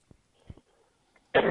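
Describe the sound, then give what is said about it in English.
A couple of faint, muffled bursts lead into one loud, harsh cough, cut off abruptly at the end. “Excuse me, I got coughing.”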